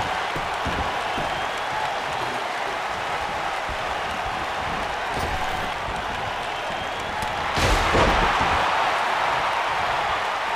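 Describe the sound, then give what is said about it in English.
Steady arena crowd roar fills the scene, then a sharp, loud steel chair strike lands near the end as Yoko hits Piper with a steel chair in a wrestling match on ECW, followed by a brief swell of crowd noise. “Yoko hit Piper with the chair.”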